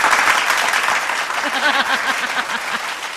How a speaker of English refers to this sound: I thought a round of applause would be fitting. Oh, that's absolutely relevant.